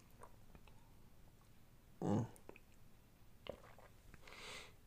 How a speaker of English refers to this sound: Hold on, let me just take a little sip of this tea.